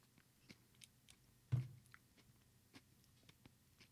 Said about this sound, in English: I apologize to listeners on Apple and Spotify if I'm chewing directly into the microphone